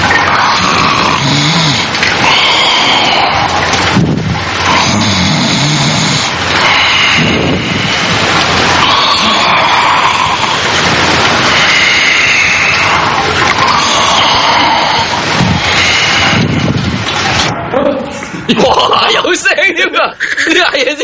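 A man's loud, rough snoring repeats in uneven breaths over a constant hiss of running water that fills the whole recording, with a short break near the end, secretly recorded in a toilet with a recording pen.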